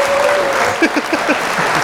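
A short round of applause celebrating Elden Ring winning the Game of the Year award: about half a dozen crisp claps in a quick, steady rhythm over a constant hiss, after a brief steady tone at the start.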